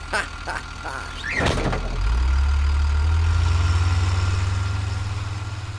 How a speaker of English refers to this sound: The driver, James Blake, closed the doors of the bus and drove off before Rosa Parks could get back on.